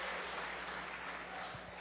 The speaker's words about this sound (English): Good. Now that the Broncos are here, or Broncos won, now let's give a little cheer. We can do that for the Broncos, I think.